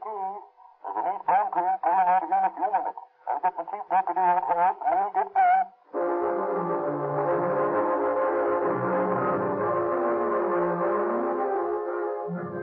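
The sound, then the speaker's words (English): Several loud, wavering horn-like blasts give way to a steady, heavy rumble of a train rolling along the track across the desert, continuous, with no voices. “As the three Los Angeles detectives climb through the Cajon Pass aboard one train, Sheriff Mahoney and his deputy rumble across the desert on another.”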